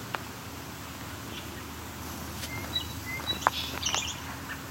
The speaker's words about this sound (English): Very short song sparrow song.